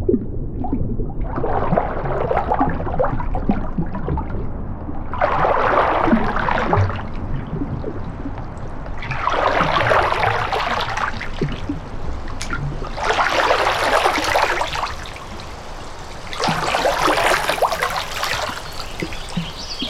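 River water flows steadily, with a louder splashing, trickling surge returning roughly every four seconds over a constant low rush. No one speaks.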